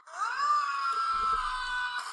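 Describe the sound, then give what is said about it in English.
Tom Cruise, in a movie clip played through computer speakers, lets out one long, loud scream that rises sharply at the start, then holds a strained, steady pitch for about two seconds before cutting off. “Scream.”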